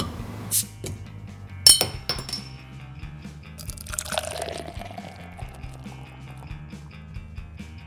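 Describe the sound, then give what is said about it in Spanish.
Lagunitas hop water is poured into glasses with a gurgling, fizzy stream, preceded by a couple of sharp glass clinks; no one speaks. “Y aquí la tenemos listos para poder compartirla con ustedes y la vamos a probar a ver qué tal.”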